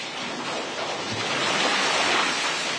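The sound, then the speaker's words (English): A steady, loud roar of rushing floodwater from a swollen river at the Taylor Street Bridge, an old trestle bridge built in 1929, just west of where the river's north branch meets the Winooski; the rising water, carrying trees and branches, is starting to overtop the bridge. A dense continuous wash of churning water swells slightly over a few seconds, with no voices. “The water on this river has started to overtop this bridge.”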